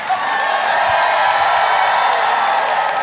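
A large audience applauds and cheers steadily for musical guests, a dense wash of clapping with scattered whoops, loud and sustained for the whole stretch without any talking.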